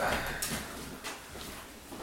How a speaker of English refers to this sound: Every time I hear that door, like wind. I know. Rattling that door.